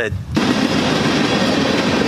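A train in a played video rushes past: after a brief quieter moment, a loud, sustained roar of rumbling and hissing noise bursts in and holds steady to the end.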